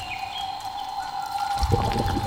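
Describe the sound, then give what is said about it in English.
A synthesizer makes a bubbling, water-like gurgle over sustained electronic tones as a performer taps water with their fingers, with a thicker, louder burst of churning low sound near the end. There's no talking. “She's on her synth and it kind of makes this gurgling sound.”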